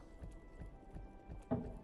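Rhythmic clip-clop of horse hooves from a slot game, steady beats about every third of a second over a low background hum, with a brighter chime-like accent near the end.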